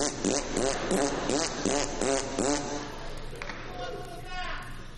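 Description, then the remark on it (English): A voice blows a quick series of about six buzzy lip raspberries in a steady rhythm, each a short flapping burst, before trailing off into a softer, rougher sputter. “I was into the bilabial fricative, you know.”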